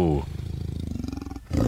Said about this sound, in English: By the way, here's a leopard. Yeah. Wow. Sounds like a snoring large tube. That is ferocious.